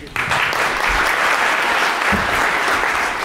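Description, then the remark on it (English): Steady audience applause welcoming a guest speaker at an event, a dense wash of many hands clapping at an even, loud level throughout, with no voices standing out. “Please give him a big, big, big applause.”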